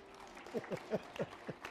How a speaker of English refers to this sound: Yes, we clap for the baby bear. He lived to tell the story.